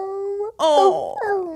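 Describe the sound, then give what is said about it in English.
A human voice mimics a whimpering puppy: high, wavering whines that rise and dip, break briefly, strain into a quivering cry, then trail off in one more thin whine. “All right, everyone, do your best whimpering puppy,”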